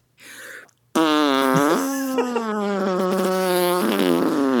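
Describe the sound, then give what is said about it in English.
Someone blows a loud raspberry imitating a fart: a short breathy puff, then a long buzzing, wavering blurt that carries on for several seconds with no talking. “Ew, that sounded like a fart.”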